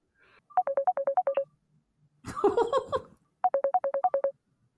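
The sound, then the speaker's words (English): A bright electronic default mobile phone ringtone, the one that came with the phone, plays a quick run of repeating beeps, pauses while people talk over each other briefly, then chimes the same rapid melodic pattern again, clear. “It's whatever came with the phone.”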